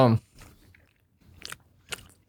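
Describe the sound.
Wet chewing of a giant, soft and sticky gummy candy, with a few squishy bites spread across a couple of seconds after a brief voice at the start.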